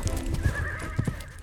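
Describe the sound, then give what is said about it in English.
Horse hooves clip-clop in a few uneven, moderately loud strikes, with no one talking, as a farmhand rides a horse away at an easy pace. “So they picked out another horse and the farmhand rode away.”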